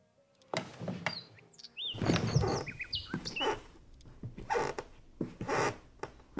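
bird, birds chirping

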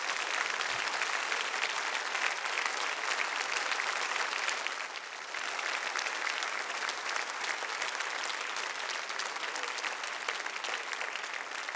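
crowd, audience applauding

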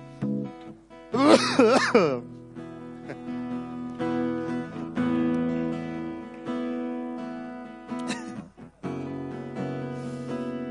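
human body sound, cough

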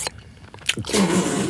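food or drink, loud chewing of food

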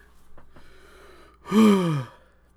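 human body sound, heavy breathing

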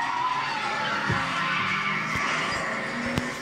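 vehicle, truck skidding

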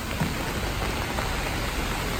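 nature, heavy rain falling

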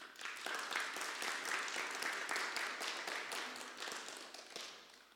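crowd, audience applause

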